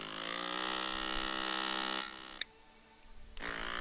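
A small electric motor hums with a steady, buzzy drone. Partway through its tone drops and thins, with a brief click, then the full whine returns.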